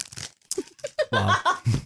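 Crinkly rustling of chocolate wrappers in short, scratchy bursts, followed by a few seconds of giggling laughter over the crackle.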